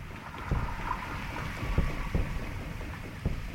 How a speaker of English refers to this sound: That sounds so mechanical. Part of what may sound like a boat to you is actually echolocation. You're hearing a tick, tick, tick, tick. Oh, yeah. That's not the engine.